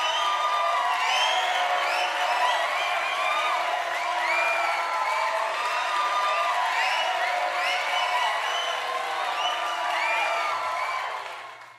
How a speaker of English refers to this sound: Round of applause.